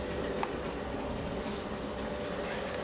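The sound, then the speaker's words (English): A steady, dense rumble of a Union Pacific freight train rolling across a railroad diamond crossing, its low mechanical roar holding constant throughout with a brief faint squeal partway through and no voices. “as we walk out to the diamond here, we've got a Union Pacific train that is holding the diamond at the moment.”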